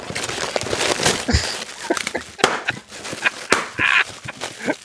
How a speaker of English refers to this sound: Ooh, bubble wrap.